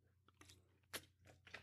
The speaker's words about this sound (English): So let me grab a sip of water, take a deep breath.